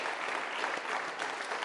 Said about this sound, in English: And as that video said, they did not serve for us to give them that round of applause, but we give you that round of applause to thank you.